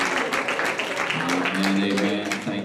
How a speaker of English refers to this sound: Come on and clap your hands and praise him. If you believe your own prayer, give him praise.